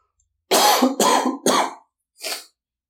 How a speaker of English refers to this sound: Sorry, still getting over this cough, trying to do my best to get over the sickness here.